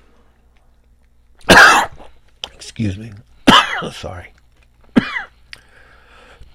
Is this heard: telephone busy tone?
no